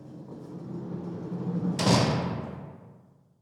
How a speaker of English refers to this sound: People have experienced disembodied voices, footsteps, banging sounds, and even the sound of cell doors opening and closing.